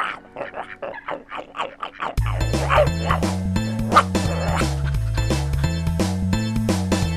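A run of quick, close dog yelps and whimpers for about two seconds, then a steady, loud musical backing comes in with a bouncing bass line.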